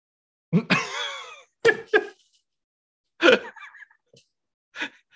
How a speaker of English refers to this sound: It looked like you just went to smash your head into the wall. I'm so sorry. I had to sneeze. Oh, forgive me.